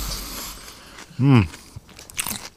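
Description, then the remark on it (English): Close-up crunching as someone bites into a pickle, with short wet crackly bursts and a brief voiced hum partway through, recorded right up against the microphone. “Make sure you chew on it close to the microphone.”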